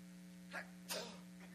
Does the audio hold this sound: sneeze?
yes